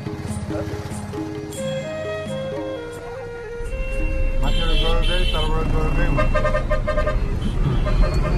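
Busy city traffic jam in Kathmandu, Nepal, with engines rumbling and several car horns honking in short bursts, the din swelling louder midway as vehicles crowd together.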